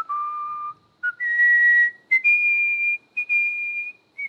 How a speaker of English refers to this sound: Yeah, but hold on. Here's let me do my whistle real quick here. Okay.